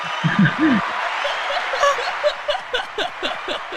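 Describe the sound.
Two people clap their hands together in a quick high-five, with a few sharp slaps following brief laughter and chuckling voices.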